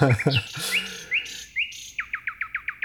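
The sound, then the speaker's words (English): A male nightingale sings its courtship song as a night song, a clear, loud phrase of varied whistles and rich low chuckling notes, ending in a rapid series of about eight bright, repeated chirps. “And he sings his courtship song as a night song”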